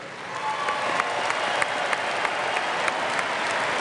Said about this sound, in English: Let's give a big round of applause for the Edmonton Symphony Orchestra.